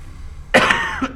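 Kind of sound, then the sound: human body sound, sneeze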